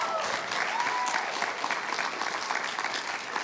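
A crowd applauds with dense, steady clapping that stays loud and even throughout, forming a continuous crackling wash of many hands with no talking over it.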